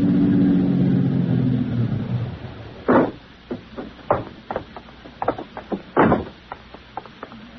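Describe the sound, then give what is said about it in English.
A car engine rumbles steadily for a couple of seconds, then gives way to a series of sharp clicks and thumps, like a door and footsteps. No one speaks. “My car is right outside.”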